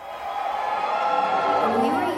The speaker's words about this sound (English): And he put out this advertisement. And there's this space-aged countdown. And then this hushed quiet across the crowd, followed by some scattered cheering.